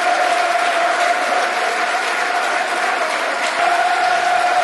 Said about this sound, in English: All I can think to say, listen to the applause, this is how well thought of Ray Wilkins was, is thank you, Ray. Club, country, and Millwall, great man too.